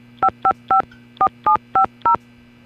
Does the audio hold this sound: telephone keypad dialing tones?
yes